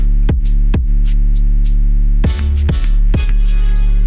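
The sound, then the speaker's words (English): A deep, sustained 808 bass drones loudly under sparse percussive hits that frame the chord changes, with reverb automation washes swelling and fading behind them, no voices, just the booming low end rolling steadily through. “because obviously 808s on their own get a bit boring. I've just left them on, but I think it sounded really empty until I put the reverb automation on it.”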